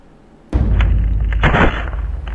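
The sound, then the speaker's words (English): A sudden loud crunch from an impact breaks the quiet, followed by a heavy, sustained rumbling and creaking as timbers shake and rattle for a couple of seconds before easing slightly. “There is a sudden crunch and a shaking of the timbers around us.”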